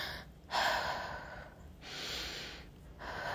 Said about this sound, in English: So for me, it's just taking a step back and breathing, like literally deep breaths.